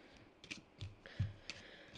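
Quiet shuffling of a deck of playing cards during a game after the player has run out of cards, with a handful of short papery riffles and soft clicks spaced irregularly. No one is talking.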